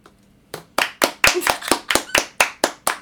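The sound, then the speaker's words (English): A steady run of about ten sharp hand claps, evenly spaced, with no voices. It sounds like one person clapping on their own. “I was taking notes on my phone for the episode about his album, and I wrote, "Glad he's back," and in asterisks I wrote, "Hold for applause."”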